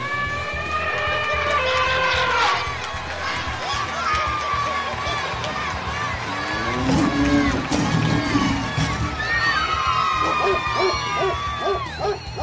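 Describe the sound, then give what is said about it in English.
A lively crowd at the Animal Olympics race, in the woods behind the 401 Story Studios in North Kingstown, Rhode Island, cheers and hoots continuously, with overlapping high whoops and shouts rising and falling in pitch, loud throughout. “We are live here in North Kingstown, Rhode Island, in the woods behind the 401 Story Studios, and the crowd is fired up.”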